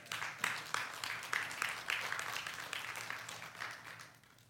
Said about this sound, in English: Can you give him a clap offering?